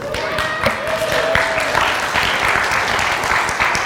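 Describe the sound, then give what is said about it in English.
A church audience claps for Jesus steadily, a dense, sustained burst of applause with many overlapping hand claps filling the whole stretch, and a faint tonal hum briefly audible beneath it. “But we're clapping for Jesus.”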